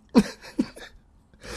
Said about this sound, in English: Coughing hard into the mic.